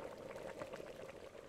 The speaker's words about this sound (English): Ooh, can you hear that kettle boiling? Preparing ourselves for this beautiful drink.